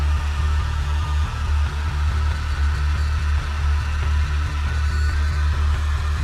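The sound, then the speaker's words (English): A vocal effect made by saying "wow" into a microphone with heavy distortion added, for a bat sequence: a loud, pulsing "wow" repeating in a steady rhythm, buzzing and gritty with a deep droning low end, running continuously without any talking. “So I just basically got a microphone and went wow, wow, wow. And then I put loads of distortion on it.”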